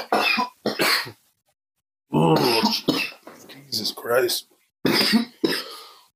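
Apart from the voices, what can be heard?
coughing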